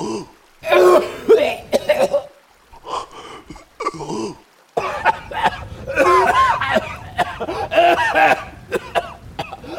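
A loud coughing fit from someone who has just woken up: repeated harsh, raspy coughs and throat-clearing in uneven bursts, broken by a brief pause, then continuing with ragged, wheezy hacking.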